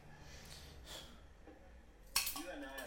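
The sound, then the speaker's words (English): A swing-top beer bottle is flipped open with one sharp clack of the stopper and a light glassy clink, then a brief faint hiss. There is no real pop. “Swing top. There wasn't a lot of fizz came out of that. No, it didn't pop.”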